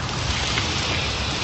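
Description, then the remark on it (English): A large fire with flames about 15 to 20 feet high crackles steadily, a dense, continuous rush of fine pops and hiss that stays loud and even throughout, with no voices over it. “The heat is absolutely incredible. You can probably hear the crackle.”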